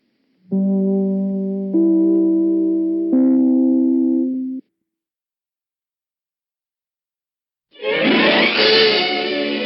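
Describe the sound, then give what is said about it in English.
The three-note NBC (National Broadcasting Company) broadcast chime rings out, each sustained, harmonically rich tone stepping to a new pitch, then silence before a loud, dense wash of sound bursts in. “Just as soon as I ring my chime, this is NBC, the National Broadcasting Company.”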